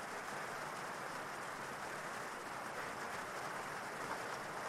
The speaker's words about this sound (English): And as it continues to rain, you continue to feel more and more comfortable